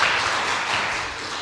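A steady round of applause from a group, dense overlapping claps forming a continuous crackling wash at an even, moderate loudness throughout, with no voices heard.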